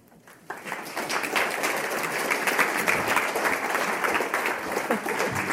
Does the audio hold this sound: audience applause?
yes